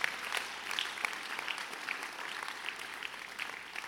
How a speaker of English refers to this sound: You're not even clapping your hands right there.